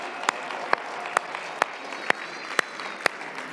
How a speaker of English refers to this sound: And how about one more round of applause for all the teachers and the kids?